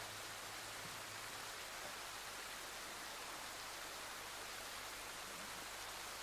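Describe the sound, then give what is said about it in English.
Soft, steady rain falls continuously, a dense and even hiss with no distinct drops standing out. It stays quiet and uniform throughout, with no voices or other sounds. “All there is the sound of the rain gently coming down.”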